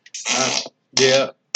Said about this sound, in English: And I'm telling you, it wasn't but a few years ago that they actually allowed that scene to be played on broadcast network TV. That doesn't surprise me. And, of course, we're talking about the bean eating fart scene.